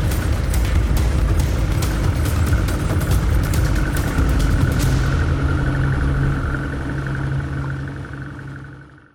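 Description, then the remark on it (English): A boat motor runs loudly and steadily with a deep rumble, its pitch shifting slightly as the boat pulls away from the dock before fading at the end. No voices are heard. “All right, folks, keep your hands, arms, feet, and legs inside the boat because this episode is about to leave the dock.”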